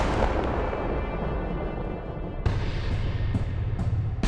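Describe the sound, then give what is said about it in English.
Over a dense, steady rumble, a single loud shotgun blast, fired by a preacher at his wife, bursts out abruptly, its booming tail lingering, followed by a few fainter sharp cracks. No one speaks. “The preacher aimed the shotgun at his wife and then pulled the trigger one more time.”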